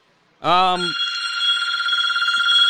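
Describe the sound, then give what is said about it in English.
A telephone at Ron Miller Race Cars starts ringing after a brief moment of quiet, a loud, steady high-pitched electronic trill that warbles rapidly and keeps going without a break to the end. “Somebody calling Ron Miller Race Cars right now?”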